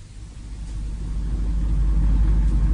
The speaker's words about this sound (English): I should switch the engine off,